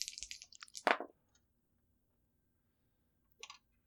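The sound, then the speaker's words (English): Percentile dice are rolled, rattling and clattering across a hard surface for about a second, ending in a sharper knock, then quiet until a brief second clatter near the end; the roll comes up 66. Fairly soft, with no talking. “Roll those percentile dice for me.”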